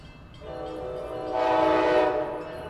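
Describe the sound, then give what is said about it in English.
A train horn blares at a station platform in one long, sustained chord that swells louder midway, over a low rumble of the train, with no voices. “Matt Roy stands on the train platform.”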